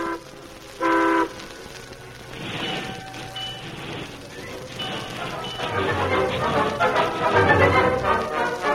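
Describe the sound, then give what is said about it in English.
A brief horn toot sounds early on, then a westbound train rolls on after its scheduled stop at Burtville, rumbling and clattering steadily, its noise building louder as it rolls along, with faint voices underneath. “Then the train rolled on.”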